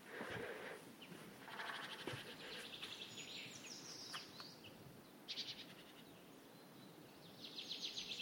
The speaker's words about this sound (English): It's a chaffinch. It's that male chaffinch again.